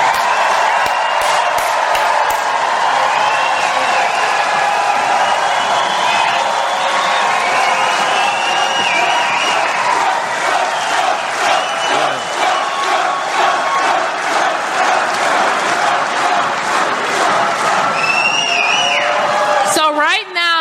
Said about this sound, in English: So every one of you, I want you to give an applause for Donald Trump, who helped overturn Roe versus Wade.